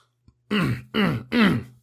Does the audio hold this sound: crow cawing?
no